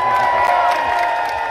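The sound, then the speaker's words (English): A large crowd cheers and applauds for Lauren at a show in a loud, steady wash of clapping and whoops that never lets up, dense and continuous from start to finish. “Give Lauren a round of applause.”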